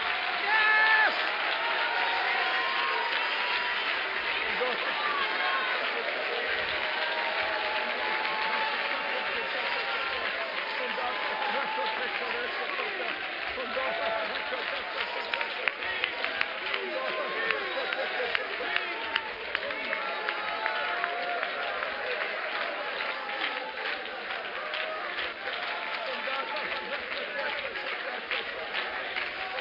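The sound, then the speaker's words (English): A church audience at a service claps hands steadily for the full half minute, a dense loud wash of claps mixed with crowd voices shouting, with sharper individual claps standing out in the second half. “I feel in the Holy Ghost tonight, if we will simply stand and shout the name of Jesus and begin to clap our hands, that something will burst forth.”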